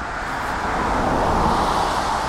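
Steady roadside traffic rumbles on Valley Road, with a vehicle swelling louder as it passes midway before the broad whoosh of the street continues. No one speaks.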